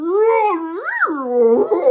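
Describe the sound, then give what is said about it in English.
A golden retriever, Truffle, whines at the door at Londolozi in one long, drawn-out cry whose pitch wavers, swoops upward, then sinks into a lower, rougher moan near the end. No one speaks. “It was a golden retriever.”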